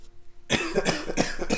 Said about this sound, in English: You all right? I had a rough hiccup.